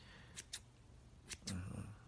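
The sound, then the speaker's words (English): Two pairs of crisp scissor snips, quick, each pair a short double click, as scissors trim the top of someone's hair, with a faint low murmur of voice creeping in at the end. “Trimming the top, making it look really good and even. You know? Now that takes a skill with these scissors to make the top stay even.”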